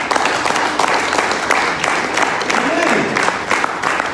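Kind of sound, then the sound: crowd, audience applause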